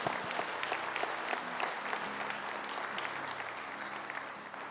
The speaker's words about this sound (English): Give the Lord a big hand clap right now.